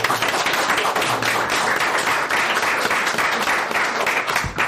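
A crowd claps steadily for a few seconds, a dense, even patter of many hands filling the room at a moderate level, with a faint thump near the end.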